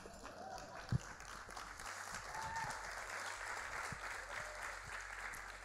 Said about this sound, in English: I'm done teaching today. Give the Lord a clap.